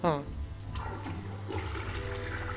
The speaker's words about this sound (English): Oh, wait, does it actually... Let's see if the water goes down. Is it down. Flushing? No. It flushes, but nothing like... The water level doesn't change, nothing happens.